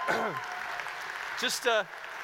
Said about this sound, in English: So now let's clap. Amen to that, yeah?